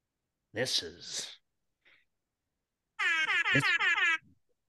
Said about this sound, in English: Yeah, give me that air horn.